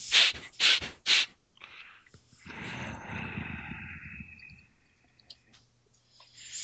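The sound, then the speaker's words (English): A person imitates a creature sniffing the air: three quick, loud sniffs in a row, followed by a longer, rough, breathy snuffling exhale that fades out. “Sniff at the air.”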